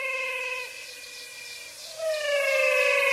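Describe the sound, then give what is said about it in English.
Frogs calling in a swamp in the Pantanal, a floodplain mainly in Brazil that extends into Bolivia and Paraguay. A dense chorus of steady, whistle-like tones layered at several pitches, shifting pitch once and swelling louder toward the end, with no voices. “I recorded these frogs in the Pantanal.”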